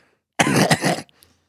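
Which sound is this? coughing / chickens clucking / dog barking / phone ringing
coughing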